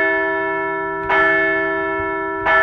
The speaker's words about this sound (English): Loss number 11,234 of all time, but the Phillies struck back with comeback walk-off win on Tuesday and a series-clinching victory on Wednesday, so let's ring the bell for another series win.